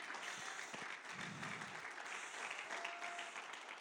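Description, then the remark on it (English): A crowd claps hands together in a dense, continuous burst of applause, steady and fairly loud throughout with no individual claps standing out. “Come on, clap your hands and say, God, I'm determined.”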